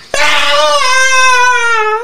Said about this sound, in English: Oh, no. Hey, what the hell was that? Is that a female around? Female scream echoes through the building.